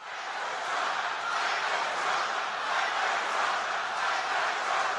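A large crowd chants "Fight for Trump" loudly in unison at Donald Trump, a dense roar of many voices with a steady repeating rhythm, sustained for several seconds without pause.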